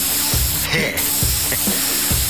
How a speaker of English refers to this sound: Look, here's an aerosol can. Watch this.